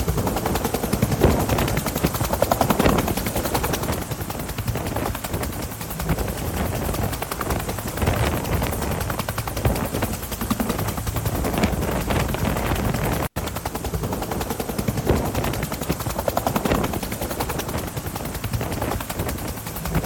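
Loud, continuous helicopter rotor noise fills the scene, a dense chopping roar that stays close and steady throughout, with bursts of distant gunfire mixed in and no one speaking.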